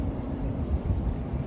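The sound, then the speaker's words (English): Strong wind on the edge of a lake on a sunny day buffets the microphone in a steady, deep rumble that swells and dips throughout, with no voices present. “So, also, it's pretty windy right now, so it may actually just be okay.”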